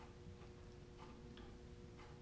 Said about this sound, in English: But begin to feel the rhythm of your pulse, as gentle but as steady and rhythmic as that second hand on the clock.